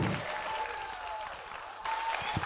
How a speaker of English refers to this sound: Somebody clap your hands and shout like you are unstoppable.